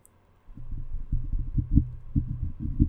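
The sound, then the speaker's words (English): Tapping on a microphone: a quick, irregular series of dull, low thumps that starts after a brief silence and continues steadily for a couple of seconds, with no voices. “So they tap. Why do they do that? Let me demonstrate.”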